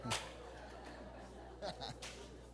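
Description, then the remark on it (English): A sharp slap rings out at the start, followed by a few softer smacks and bursts of chuckling amid a low murmur of voices, as standing people playfully slap the person next to them. “Stand up and shake your leg. And slap the person next to you.”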